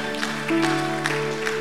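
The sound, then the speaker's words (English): A few scattered hand claps land at uneven intervals over a steady humming tone in the background, the claps sharp but not especially loud. “Oh, you clap.”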